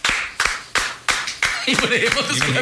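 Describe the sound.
Five sharp, evenly spaced hand claps ring out in a steady rhythm, then a voice starts speaking as the clapping stops.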